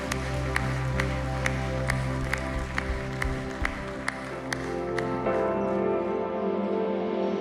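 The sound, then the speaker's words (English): A crowd gives a round of applause for Christ during a Christmas worship message, applauding steadily over sustained, droning background music with a regular ticking beat; the clapping is continuous and moderately loud, with no voices standing out. “Can we give him a round of applause?”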